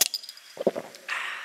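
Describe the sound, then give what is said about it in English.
Shot glasses clink together in a toast before taking shots: a few quick, bright, high-pitched taps, followed by softer knocks and a steady hiss of noise. “Yes, I poured one preemptively because I'm so excited. All right, shots. Ready? Clink.”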